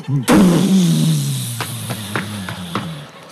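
A car engine bursts into a loud roar as the driver presses the gas, pulling from the driveway into a home garage, then its pitch slides lower as it keeps droning, with several sharp knocks and clatters over the last couple of seconds as baggage on the car roof rips into the garage.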